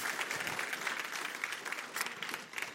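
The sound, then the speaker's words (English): An audience applauds a boy who does ministry, with steady, dense clapping from many hands, sustained at an even volume throughout without a break, with no one speaking over it. “Would y'all give him a hand clap one more time?”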